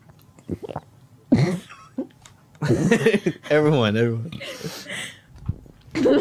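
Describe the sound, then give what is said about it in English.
A few short, loud swallowing gulps, each a quick throaty pop, come among bursts of people talking, with a drawn-out voiced sound in the middle. “How do you swallow so loudly?”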